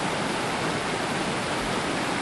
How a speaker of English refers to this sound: This river isn't deep enough to run. Not that I have any experience with that.